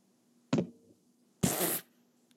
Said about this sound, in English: He's knocking his pop filter on his mic, everybody.